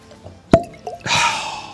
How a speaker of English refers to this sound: Let's go ahead, pop the cork.